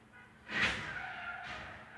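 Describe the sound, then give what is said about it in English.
Tires screech outside in a car accident, a sustained squealing whine with a dull impact at its start and a second rush of noise a second later, muffled as if heard through a window. “That was a car accident. I mean, you guys definitely just heard that.”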